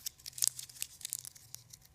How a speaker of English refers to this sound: What if I took this $100 bill and I crumpled it up?